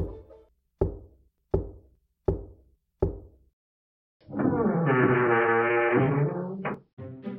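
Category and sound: impact, knocking on a door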